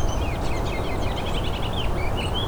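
white-throated sparrow singing

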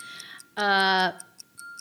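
clock ticking

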